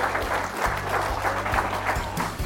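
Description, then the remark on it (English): An audience at Oasis Church gives the Lord a hand clap, clapping steadily, a dense wash of many hands applauding together at full volume throughout, with low sustained tones humming faintly beneath. “Would you give the Lord a good hand clap?”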